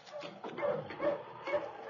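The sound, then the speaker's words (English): A sled dog team barks and yips outside a cabin at dusk as it is hauled in, three sharper barks standing out over a steady jumble of canine noise, moderately loud. “The gang was just finishing an early supper as they heard him hauling his team outside the cabin.”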